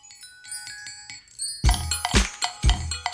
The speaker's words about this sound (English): But here we go, the distinctive jingly-jangly bells of a very well-known dance anthem.